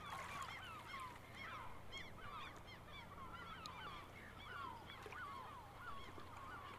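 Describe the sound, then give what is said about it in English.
A flock of seagulls at the beach calls continuously, many squawking cries overlapping over a steady low background rumble, with no one speaking. “Seagulls at the beach.”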